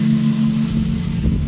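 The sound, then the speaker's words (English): A farm pickup truck engine idles at the farm fuel tanks while the truck is filled with fuel in the morning, a steady low rumbling hum that holds even throughout with no talking. “I'm at the fuel tanks filling my farm pickup truck up with fuel this morning.”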